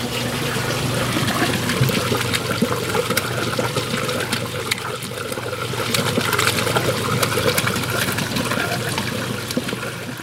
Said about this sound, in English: And it's always soothing to hear the sound of flowing water and bubbling things.